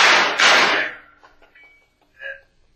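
Two loud knocks land in quick succession on a back door, followed by a few faint taps and clicks as things go quiet.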